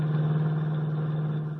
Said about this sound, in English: Meanwhile, on one of the many highways climbing the hills to the north of the city, Henry Miller, the Atom Man, wearing cheap clothes, a checked cap and dark glasses, rides in the front seat of a small delivery truck beside the driver.